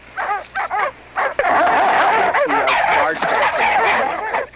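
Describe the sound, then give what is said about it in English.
A dog in a film barks in a few short, separated bursts, then breaks into loud, dense, continuous barking and yapping over a busy, noisy background. “You see the dog? He's got his stuff. Here comes the dog.”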